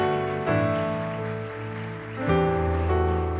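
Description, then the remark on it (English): An audience claps together in expectation after a prayer, a dense steady patter of many hands mixed with sustained musical chords that shift and swell partway through. “You clap your hands in expectation.”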